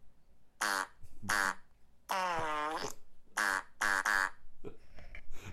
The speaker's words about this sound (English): I think the host just farted on his podcast. Are you sure he farted on his podcast? Oh, yeah, it sounded like this.